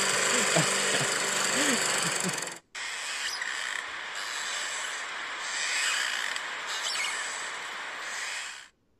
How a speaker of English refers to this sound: So that is either a bad car, so, or a lawnmower. The lawnmower.